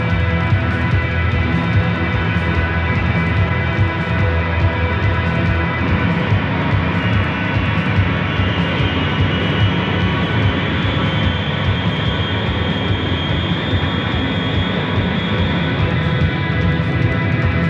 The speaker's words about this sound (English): As the plane leaves the earth, many of the passengers turn their heads, look out the window.